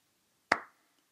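One sharp hand clap rings out on its own, with a crisp attack and a short fading tail, then silence. No voices are heard.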